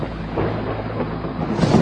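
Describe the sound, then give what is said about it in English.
A deep, sustained roar of thunder rumbles continuously, loud, with heavy low-end energy that swells slightly toward the end. No voices are present. “And after the angel picked it up and threw it to the earth, there followed unbelievable roaring of thunder and sounds and flashes of lightning and even earthquakes.”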